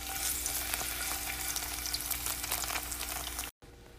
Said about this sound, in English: Sizzling on stove.